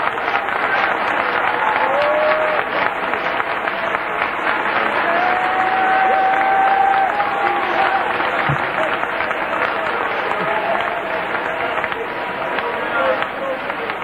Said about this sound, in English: Would you clap your hands and give praise to this great, big, wonderful, mighty God tonight?